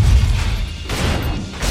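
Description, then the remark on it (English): A giant machine, the Vision That Endures, is slammed backward and crashes through buildings as it stumbles to the ground, making a loud, continuous rumble of smashing debris with deep booming thuds and fresh bursts of crashing noise toward the end. “The vision that endures is slammed backward, crashing through buildings as it stumbles to the ground.”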